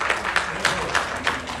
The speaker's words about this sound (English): And by the way, can we have just a little bit of fun? Can we clap as they're coming in? Yay.